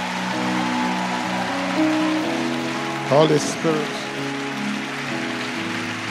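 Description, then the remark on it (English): A crowd claps their hands to the Holy Spirit, a dense crackling wash that runs through the whole stretch beneath sustained musical tones, with a man's voice briefly calling out over it. “Can you may clap those hands to the Holy Spirit?”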